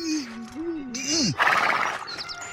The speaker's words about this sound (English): Damn horse. If you could only speak up.